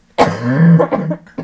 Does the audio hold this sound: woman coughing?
yes